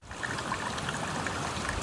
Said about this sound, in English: Saddler Creek still meanders through Anderson County in the backwoods of East Texas, just as it did in July 1910.